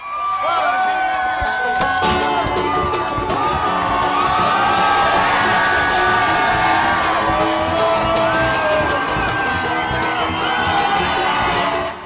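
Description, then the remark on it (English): A big outdoor crowd of about 1,500 people on the steps of a Civil War monument in downtown Indianapolis roars in the rain as Sanders comes into view, full of high-pitched screams, whoops and cheering that stay loud and dense without letting up for four straight minutes. “There were four straight minutes of screaming.”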